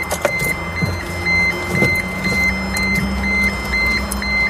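A car indicator pulses with short, high-pitched electronic beeps at a steady, quick rhythm, sounding over a continuous low engine hum with no voices.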